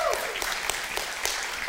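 A crowd claps together in steady, dense applause, a continuous patter of many hands with sharper individual claps popping through, and no voices over it.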